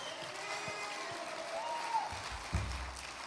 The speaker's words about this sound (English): Can we give our kids a huge hand clap this evening? Wow. What a fantastic job.